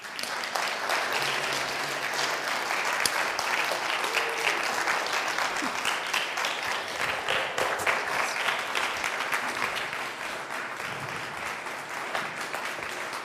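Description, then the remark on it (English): A church audience applauds steadily for over thirteen seconds as a new pastor is called up, a dense wash of clapping that stays loud and even throughout, with faint cheers and voices mixed underneath. “We've got more important things to do than you guys to clap for a man.”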